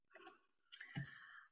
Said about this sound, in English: I just watched the Nashville match and I am furiously typing up a hot or not storm.